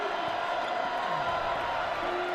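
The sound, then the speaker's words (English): A basketball crowd at a BYU game cheers after a three-pointer by TJ Hawes, in a steady, dense roar that holds at an even level for a couple of seconds, with no sharp peaks or breaks. “And we're giving the fans something to cheer for.”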